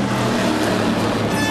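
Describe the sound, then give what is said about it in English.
Two race cars roar past at speed, a loud, dense engine noise that stays steady for a moment, with a higher whine rising near the end, heard from opposite the Peugeot garage at a motor race. No one speaks. “No need to tell you what those two cars were.”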